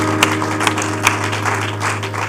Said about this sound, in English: And would you just give the Lord a hand clap of praise this morning? Hallelujah. Praise God. Praise God.